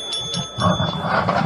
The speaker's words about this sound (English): Oh, the bell. Uh-oh. This is the real bell